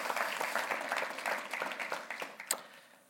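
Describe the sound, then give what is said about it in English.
A church audience at a first service applauding to thank the tech people, a dense crackle of many hands clapping at once, steady at first and then thinning out and fading toward the end. “Would you express your appreciation to the tech people today?”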